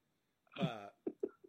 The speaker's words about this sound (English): Whoa, sorry, nice burp.